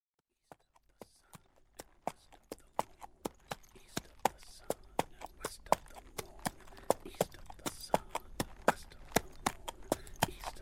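Horse hooves clip-clop in a steady, brisk rhythm, starting with a few scattered steps and settling into a regular trot. The sharp knocks sound over a faint background hiss.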